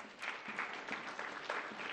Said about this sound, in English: If that's been you, why don't you clap your hands right there?